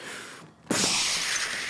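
A sudden loud crash of skylight glass breaking bursts in after a brief lull, followed by a bright, sustained shower of tinkling glass shards raining down all around.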